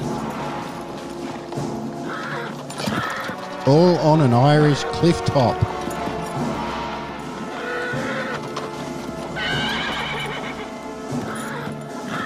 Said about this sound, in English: Just listen to this. Jeeps crashing, horse hooves jumping. Men in trench coats getting out of cars.